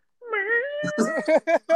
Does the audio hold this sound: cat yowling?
yes